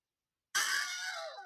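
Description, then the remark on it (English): A person voices an imitation of the famous stock movie scream heard in Star Wars, Indiana Jones, Aladdin and many Disney and Pixar movies: one sudden, loud, high-pitched yell that bursts out after silence and holds steady for about a second before tapering slightly. “But yeah, that's the scream, right? It's been in like Star Wars movies, Indiana Jones, a whole lot of Disney and Pixar movies.”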